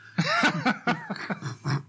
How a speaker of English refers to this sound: I'm about to cough.